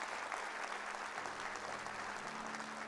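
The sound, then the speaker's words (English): A crowded church audience claps together in steady, dense applause that fills the whole stretch, many hands at once, with a faint low hum underneath and no clear speech. “I want you to clap your hands and say, God, I'm going to have my dreams revived.”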